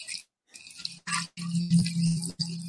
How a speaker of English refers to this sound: This is an old bartender trick. When you're at your tailgate, just pour it back and forth. We got our main drink glass with the OJ.